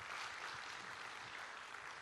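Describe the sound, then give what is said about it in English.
An audience applauds, a steady wash of many hands clapping that holds an even, fairly soft level throughout with no voices breaking through. “Come on, if you believe that, would you give him a good round of applause today?”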